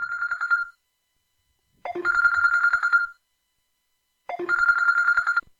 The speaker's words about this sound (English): Let's see if this works. Phone is ringing. Okay. You guys ready?